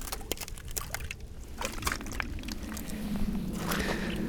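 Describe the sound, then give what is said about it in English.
Footsteps crunch across ice in an uneven rhythm, each step a sharp crackle over a steady wet, squelchy background with a muddy, slushy texture; no voices are heard. “Oh, it's actually still ice.”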